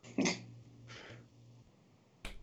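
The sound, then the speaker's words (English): A yawn with a breathy, throaty start that stretches into a low, drawn-out voiced groan lasting over a second, then a short sharp burst of sound at the very end. “I chose to yawn there at the exact wrong moment when I had to speak.”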